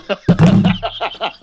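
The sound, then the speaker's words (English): A phone hits the floor with one sudden, loud thud and a brief low rattle, while people keep talking before and after the impact. “Of me dropping my phone.”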